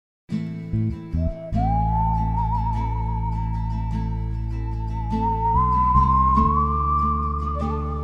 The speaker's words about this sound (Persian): تا حالا تو تاریکی گم شدید؟ تا حالا از ترس سوت زدید؟ از دلهوره، از نگرانی سوت زدید؟